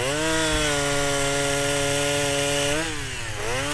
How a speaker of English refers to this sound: I have a chainsaw for an arm.